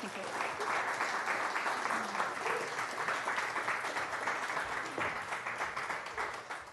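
A crowd applauds steadily, a dense wash of many hands clapping at an even, fairly loud level that thins out slightly toward the end, with no voices standing out.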